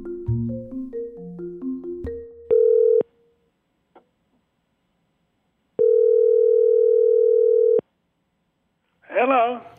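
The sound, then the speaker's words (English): A quick run of touch-tone dialing beeps, then two long, steady ringback tones through the phone line, a pause between them, before a voice briefly answers. “That was quite a shock getting your phone call.”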